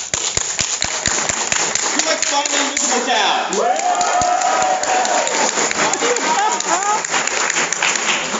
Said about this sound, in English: You know what? Let's go up by audience applause. Who thinks Jern Crazy's better?